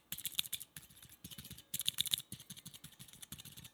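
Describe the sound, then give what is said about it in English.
Rapid, crisp clicking of nine different types of keyboard switches pressed in quick irregular bursts, with a few brighter, sharper ticks standing out. No one speaks. “And that was 9 different types of keyboard switches.”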